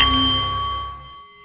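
A single metal meditation bowl from Nepal chimes clearly, its bright sustained tone and low hum slowly fading over a second and a half, with no voices.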